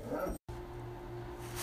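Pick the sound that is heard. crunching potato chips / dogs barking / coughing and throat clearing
dogs barking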